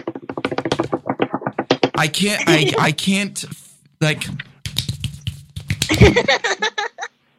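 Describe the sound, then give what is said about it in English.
A quick improvised drum roll of rapid, accelerating taps, like hands or fingers drumming on a tabletop, followed by people laughing and talking over more scattered tapping. “Drum roll, please.”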